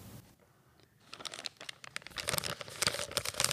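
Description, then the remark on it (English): A package of Kellogg's Special K Crunchy Bites, dark chocolate salted nut, is opened with sharp, crinkly rustling that starts quiet, then builds after a second into dense, loud bursts of crackling plastic. “It's time for a snack.”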